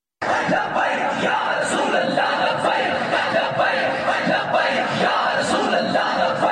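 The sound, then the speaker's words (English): A large street crowd shouts and chants in unison, reacting to a Christian mother accused of blasphemy being taken off death row, chanting "Friends of blasphemers deserve death": a dense, loud roar of many voices that starts abruptly and holds steady for several seconds, with individual yells rising out of the mass. “Here is the reaction of the street.”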